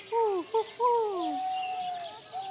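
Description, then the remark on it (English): A bird keeper standing by the owls imitates bird calls with his voice: a few short, swooping hoots and chirps, then a long steady whistle-like tone, clear with no talking. “He sure does know his bird calls.”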